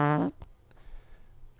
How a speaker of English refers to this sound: I don't understand why I only burp when I'm doing the podcast. Sick. Good to know. I literally never have gas ever.